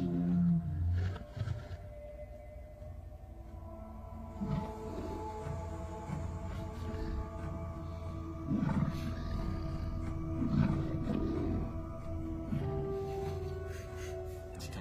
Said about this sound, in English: I like to hear the roar back at it. Wow, some of those sounds are exactly the Baby Yoda sounds.